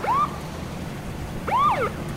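Two short, rising whoops from a sheriff's deputy car siren on a foggy road, about a second and a half apart, over a low engine rumble. No one speaks.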